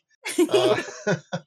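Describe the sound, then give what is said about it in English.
A fairly loud fit of coughing: one longer, rough, sputtering cough followed by two short, sharp coughs, with no talking. “Don't make me laugh. I'll cough.”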